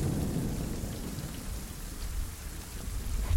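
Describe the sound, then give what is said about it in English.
A thunderstorm sound effect: a deep, rolling thunder rumble rises beneath a steady hiss of heavy rain, holding fairly even in loudness throughout, with no voices. “As two bolts of lightning crackle out of the sky and slam into the ground in front of you.”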